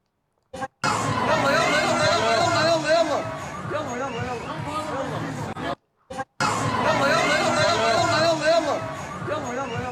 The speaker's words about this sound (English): But a mob of pro-Hamas extremists were screaming and shouting at the restaurant and those in it, implying it's a Zionist target.